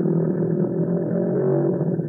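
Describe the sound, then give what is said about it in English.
A loud, steady whale call fills the whole moment, a low droning rumble with a gritty, engine-like texture that holds without a break. No voices are present. “Whale number one. Here's a whale.”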